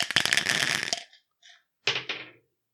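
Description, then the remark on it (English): Dice are rolled, rattling and tumbling across a hard surface in a dense clattering burst lasting about a second, followed by a few softer clicks and two final knocks as they settle, the roll coming up two. “But let's roll the dice.”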